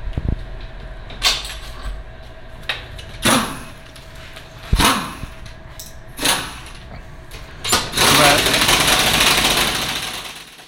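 An impact driver tightening bolts fires in short, loud rattling bursts, five brief pulses spaced a second or two apart, then one longer sustained hammering run toward the end.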